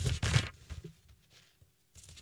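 Papery rustling of book pages being turned: a loud flutter at the start, a quiet pause with faint handling noises, then another softer page flip at the end.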